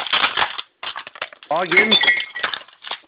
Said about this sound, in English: Someone's glass or something. Let me just drop the bottle. Yeah, someone's dropping their beer all over the place.